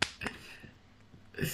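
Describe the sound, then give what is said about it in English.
A few sharp hand claps, irregularly spaced, with crisp bright smacks at the start and end and fainter ones in between. “I'm clapping.”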